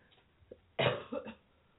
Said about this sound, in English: One second, I'm going to cough, unfortunately.